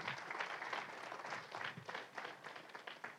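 audience hand clapping

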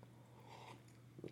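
sipping coffee

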